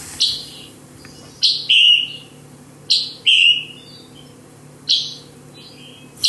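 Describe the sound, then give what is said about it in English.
A scarlet tanager's chick-burr call repeats about five times: each is a sharp, high chip followed by a burry, buzzy note, spaced in an irregular rhythm over a low steady hum. “The call is this chick-burr, chick-burr, chick-burr, and both the males and females do that.”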